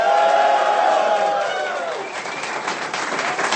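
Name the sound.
audience cheering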